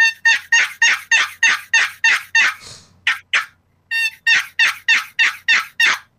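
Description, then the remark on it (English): A turkey box call, its paddle slid open and shut by hand, yelps in a quick, steady rhythm, a run of about eight raspy notes, a brief pause with a couple of softer strokes, then another run of yelps, loud. “They're definitely versatile, not as versatile as some of the other types, but super easy to get that yelping rhythm for a beginner”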